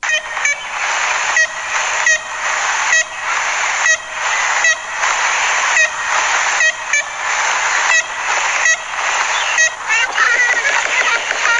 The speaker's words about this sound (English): Have a listen to this now. You're going to hear the sound here of an ivory-billed woodpecker. This was recorded in 1935. Have a listen to this.